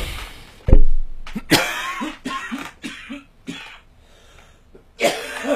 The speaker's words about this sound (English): But instead of doing any sort of sleeping whatsoever, I just every fucking 5 or 10 seconds, I just fucking cough like a motherfucker. I think I've got the consumption.